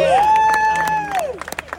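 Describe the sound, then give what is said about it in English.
An audience applauds and cheers, a long piercing whistle rising over the crowd noise before sharp individual claps take over at the end. “Give yourselves a round of”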